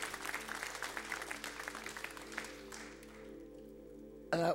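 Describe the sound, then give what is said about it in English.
The audience of King's Church Newport claps and applauds for Jesus in a dense burst of many hands, loud at first and then tapering off over a few seconds, with a sustained organ-like tone underneath. “Let's give Jesus a big hand clap right here.”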